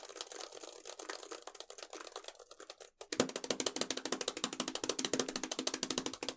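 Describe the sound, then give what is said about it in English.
Rapid, steady clicking of fingers typing an email address on a computer keyboard, fairly loud, with a brief pause near the middle before a brighter, denser burst of keystrokes. No voices. “Just typing in your email.”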